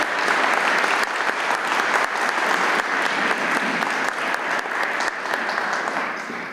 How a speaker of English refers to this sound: Thank you so much for the wonderful welcome. And thank you all for clapping. That's always so heartwarming to hear. I appreciate it very much.